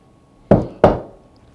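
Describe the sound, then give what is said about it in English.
Two loud, sharp knocks on a wooden door, about a third of a second apart, each striking hard and fading quickly. “He was standing at the door and knocking hard.”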